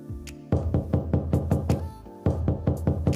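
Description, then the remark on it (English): A firm, steady series of loud knocks on a door, about a dozen evenly spaced raps with a short pause before the knocking resumes. No one speaks. “So you're not going to answer that door.”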